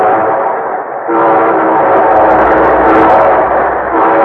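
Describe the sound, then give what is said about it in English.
A loud, sustained train whistle sound effect, the show train of the Railroad Hour radio show, blares with steady harmonic tones, then shifts pitch slightly midway and continues over a rumbling, chugging rail background, with no voices present. “And here our star-studded show train.”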